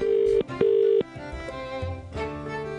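A telephone ringing tone of a call to a pub in Dublin on St. Patrick's Day sounds as a steady, mid-pitched double burst, two short rings with a brief gap between them, before giving way to a dense, murmuring background.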